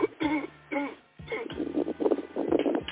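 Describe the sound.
A few short, harsh coughs come in quick succession, close and fairly loud, followed by a stretch of rough, voiced sound that runs on like talking or continued throat noise.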